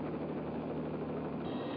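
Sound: helicopter flying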